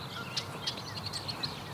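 Soft, high-pitched peeps from Canada goose goslings, about six goslings from two broods walking around with four parents, repeat in quick, uneven succession over a steady outdoor hiss, with no honking and no voices.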